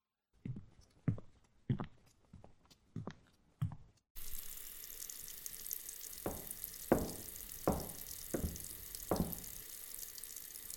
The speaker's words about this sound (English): Keep water running over until I get back, yes?